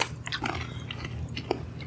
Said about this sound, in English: So, try not to chew into the mic on this one.